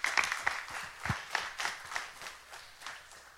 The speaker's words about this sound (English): I was clapping louder than that. I'll tell you what, there were no golf claps.